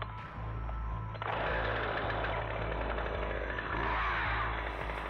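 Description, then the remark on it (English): A chainsaw idles with a low rattling hum, then revs up sharply to a loud, buzzing roar and keeps running steadily, with no voices. “retrieved his unnaturally heavy chainsaw and pulled the cord. It sputtered to life noisily and issued a puff of smoke.”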